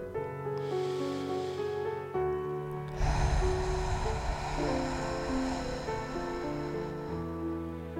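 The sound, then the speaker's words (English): A slow, deep breath is drawn in over a couple of seconds, then released in a long, airy exhale, clear over a soft, sustained musical background, as part of a guided breathing exercise aiming for inhales of three counts and exhales of six. “Please join me in a few deep breaths to recenter ourselves and our thoughts on the mercies of the Lord.”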